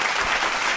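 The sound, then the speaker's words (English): A short burst of applause for someone's belated birthday, a dense, steady patter of many hands clapping at moderate loudness with no voices over it, lasting under a second. “Round of applause to her, man.”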